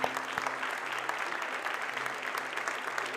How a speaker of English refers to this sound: Anyone that served in the U.S. Armed Forces in any capacity? Are you here today? We got a few hands. We see hands. Let's give these guys an applause. Thank you.